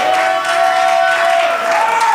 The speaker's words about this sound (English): All those clapping, may that become your portion.